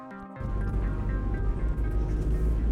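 Steady low engine rumble and road noise fill the cabin of a car moving through the city of San Salvador, with a hum that swells in after a brief quieter start and stays constant, no voices.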